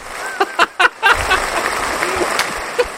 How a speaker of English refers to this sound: Extended applause for that one. Fair play to you.